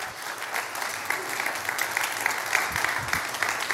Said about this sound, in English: Come on, let's give her a round of applause.